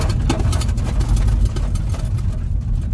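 A car engine idles with a steady low rumble, its rough, uneven chugging filling the whole stretch with no voices over it.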